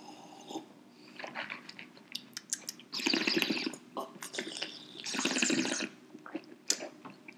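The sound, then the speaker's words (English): Wine being swirled, swished and sipped: soft wet clicks and slurps, with two longer hissing, airy swishing bursts in the middle. No one speaks. “Swirl, swish, sip.”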